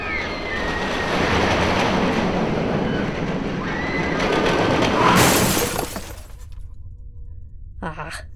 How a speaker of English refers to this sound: Shall we ride the roller coaster? I'd be game for that.